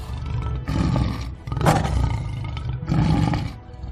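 A lion roars loudly and close, a deep rumbling growl that swells in several heavy surges over a few seconds, with no voices present.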